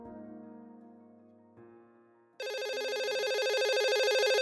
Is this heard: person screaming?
no